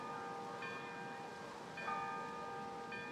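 A sundown bell rings out in slow, steady strokes, three strikes about a second apart, each leaving a long humming resonance that overlaps the next. No one speaks.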